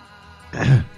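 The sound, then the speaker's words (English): A single short throat clearing, a rough, guttural burst about a third of a second long, fairly loud, with quiet background before it and no speech. “Let me clear my throat.”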